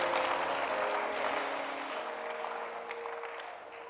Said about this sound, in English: Come on, anybody clapping?